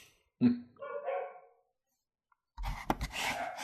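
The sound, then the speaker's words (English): A puppy gives a single drawn-out, whining bark, clear, followed after a short silence by a longer burst of rough, noisy sound. “Hey, come on, pretty puppy.”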